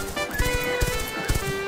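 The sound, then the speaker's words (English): Hooves clip-clop in a loose, uneven rhythm, several clear knocks over about a second and a half, set against a steady bright tonal drone in the background. “Here comes the horses.”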